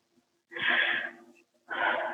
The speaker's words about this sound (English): I'm breathing deeply.